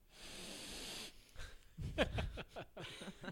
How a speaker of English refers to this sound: That was an aggressive sniff.